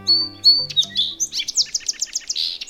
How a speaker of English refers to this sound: For most songbirds, like this song sparrow, learning their own species song is a straightforward proposition.